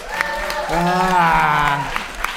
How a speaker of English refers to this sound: Real simple, like, who thinks she should just fucking go for it? Round of applause. Yay, yay, yay.